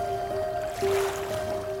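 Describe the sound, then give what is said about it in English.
Quiet night-time ambience at Kenfig Pool, a still lake: a soft, steady outdoor hush with a faint, continuous hum running underneath, and no voices or distinct events. “Kenfig Pool. What a gorgeous still water pool, stretching into the distance like a fallen mirror.”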